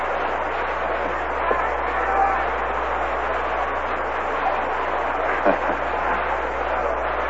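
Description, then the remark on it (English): Players in the Red Sox dugout howling and hollering during a baseball game, their voices blending into a steady wash of crowd murmur, with a few brief whoops and one sharper shout rising out of the noise. “You can hear the Red Sox dugout livening up, though. They're howling at it, Soar.”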